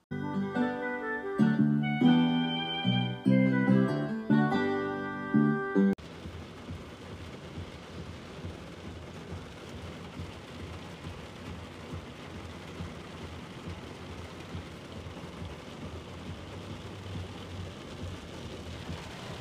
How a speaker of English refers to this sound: It is the rain on a Wednesday afternoon in Chicago. And it's the rain hitting the windshield of my Subaru, yeah.